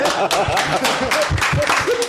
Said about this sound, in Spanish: ¡Aplauso!